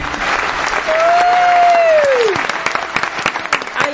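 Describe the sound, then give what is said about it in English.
Loud, dense applause from a crowd fills the whole clip, with a long sliding whistle rising over the clapping early on before it tapers into scattered claps. “I think I want to be introduced with applause every week.”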